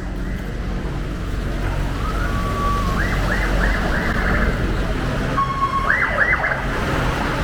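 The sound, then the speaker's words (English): A police or ambulance siren wails in two short bursts of rising, warbling tones over a steady wash of street noise at a market built on top of a highway. “Police sirens? It's little police sirens or an ambulance, who knows, but here we go.”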